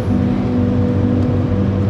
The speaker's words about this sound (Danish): Og hun er på vej til et nyt behandlingssted. Og I okay. sidder sammen i bilen. Ja. Og hører musik.